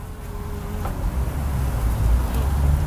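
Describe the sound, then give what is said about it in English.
A steady low hum of bees buzzing around marjoram flowers, droning continuously over a soft, rumbling outdoor background with no speech. “But this marjoram is being thoroughly enjoyed by these bees.”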